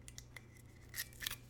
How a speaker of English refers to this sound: So let's go ahead and open the bottle and take a taste. So there is a little zip strip, if I can get this.